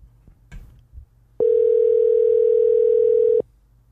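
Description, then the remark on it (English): A single steady two-second ring of an outgoing phone call's ringback tone, loud and clear, following a few quiet handling clicks and rustles. “She's not answering.”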